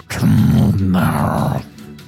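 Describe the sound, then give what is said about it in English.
A person growls out a short burst of guttural, snarling gibberish, imitating a gnoll speaking in gnollish. Loud, it lasts about a second and a half, then drops off. “And you hear them say something in gnollish that sounds to you like...”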